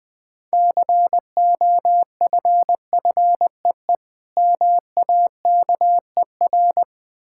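Morse code sent at 20 words per minute as a steady, mid-pitched beeping tone, short dits and longer dahs grouped into quick letters with brief pauses between, clear and alone at a brisk pace.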